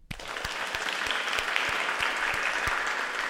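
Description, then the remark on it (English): A studio crowd breaks into steady applause for the Little Mushroom Denver Broncos, national champions after defeating the Pacific Ocean Wildcats: dense clapping filling the whole stretch at an even, fairly loud level, with a faint hint of cheering mixed into the hiss of hands. “Let's hear it for our boys and the girl kicker.”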